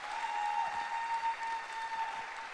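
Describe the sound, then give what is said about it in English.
An audience claps together in a dense, steady wash of applause that holds at an even, moderate level for a few seconds, with a faint steady tone running underneath and no voices. “I think you can clap much louder.”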